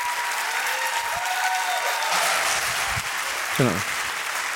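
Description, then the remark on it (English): An audience gives a round of applause as a man comes up onto the stage: dense, steady clapping at an even, fairly loud level for the whole stretch, with a few brief vocal whoops rising above the clapping. “And as he comes up, please give him a round of applause.”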